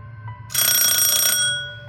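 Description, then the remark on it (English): A telephone bell rings once in a loud burst of rapid metallic clanging lasting about a second, then fades out; the caller is Hank Biscardi, wanting a script. No one speaks. “And any minute that Hank Biscardi will be on that phone again asking for my script.”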